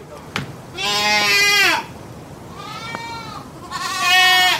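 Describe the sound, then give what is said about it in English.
Goats bleat three times in a row, long wavering harmonic cries with short pauses between, loud, with no one talking, as a goat is pulled inside a fence. “As soon as the goat stepped inside the fence, it wasn't even difficult to pull them anymore.”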